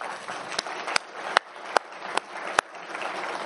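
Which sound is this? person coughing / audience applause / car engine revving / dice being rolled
audience applause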